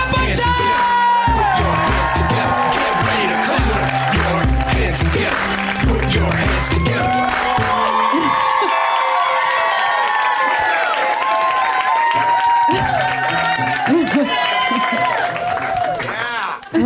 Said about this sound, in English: Thanks for coming out to the UTV. Put your hands together. Put your hands together. Please turn off the cell phones and please put your hands together for your host,